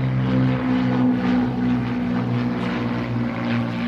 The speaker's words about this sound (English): American and British cargo planes flew around the clock to supply West Berlin. The heroic Berlin Airlift persisted from June 1948 through May 1949, delivering vital supplies and relief to West Berlin.